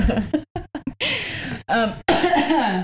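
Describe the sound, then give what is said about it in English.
A burst of short, sharp coughs, then several longer, raspy coughing fits in quick succession, fairly loud, with no speech around them. “I coughed for some reason.”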